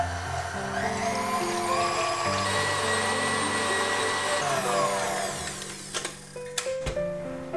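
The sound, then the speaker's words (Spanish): Loud electric mixer whirring steadily as cream is whipped in a bowl that was chilled in the fridge, its motor pitch shifting slightly near the end, with a few brief clicks and clatters. “Vierto la nata en el bol y montar.”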